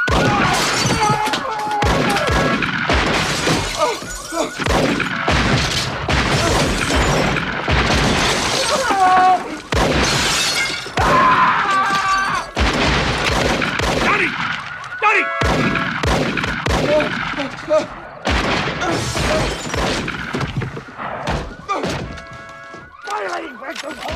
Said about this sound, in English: Like, he retreats into his house and they like shoot up his front door, and then the car alarm goes off again, so then they shoot up his car.